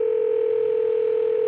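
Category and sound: signal or alarm, phone call ringing tone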